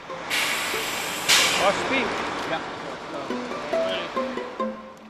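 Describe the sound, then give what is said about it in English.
A bus pulls up in a parking lot, and its air brakes let out a loud, sharp hiss and release. A lower engine drone and whine continue over background noise. “The bus is early, but Josh hustles across the parking lot like he's worried it's going to leave without him.”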